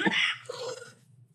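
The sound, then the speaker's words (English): A single sharp cough bursts out, then trails into a short, low, fading throaty rumble before quiet. “Excuse me. We're singing songs of coughing.”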